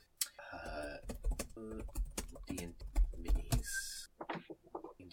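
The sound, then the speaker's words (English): Rapid, irregular typing and clicking on a computer keyboard as someone looks things up, with sharp clicks, fairly loud, mixed with a few brief voiced sounds in between the keystrokes. “Now, there's going to be a lot of, like, picked up audio of me typing and clicking in this episode just because I'm looking up stuff.”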